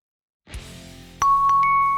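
A pizzeria door bell rings out clearly as two people walk into the store, a couple of bright ding-dong tones sustaining over a low background hum after a soft thud of the door opening.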